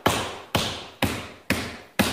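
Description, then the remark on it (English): A car's flat tire thumps against the pavement as the car pulls into a church driveway, in a steady rhythm, five heavy beats about half a second apart, each landing sharply and fading quickly, with no voices. “And they got a flat tire.”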